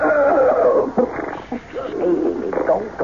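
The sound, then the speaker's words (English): A horse neighs in a loud, wavering whinny that rises and falls in pitch over about three seconds, with a short break in the middle before trailing off. “Okay, but how long do you think you can hide a horse?”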